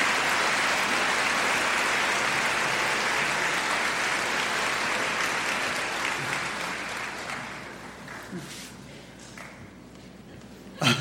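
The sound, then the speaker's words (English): A crowd applauds to thank a pastor on his last evening with them, a dense wash of clapping that holds strong for several seconds, then gradually thins and fades out, with a few scattered claps lingering at the end. “Can we give him a round of applause, a Carolina round of applause, to thank him?”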